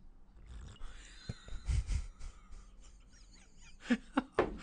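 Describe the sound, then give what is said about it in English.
Someone slurps tea from a cup: a longer, breathy slurp early on, then three short, sharp sucking slurps in quick succession near the end, with no talking. “It's quite an even slurp you got there.”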